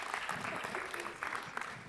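A steady round of applause from a group, dense overlapping claps forming a continuous crackling wash at moderate volume, with no clear speech over it.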